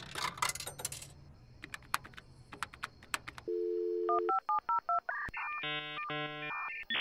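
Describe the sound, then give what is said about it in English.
A quarter clatters into the Red Lodge payphone, followed by a few mechanical clicks, a steady dial tone, a quick run of dialing beeps, and then ringing tones on the line as a call is placed to Zach. No one speaks. “Well, if he's not going to show up, we might as well just call him on the Red Lodge phone. Do you have a quarter?”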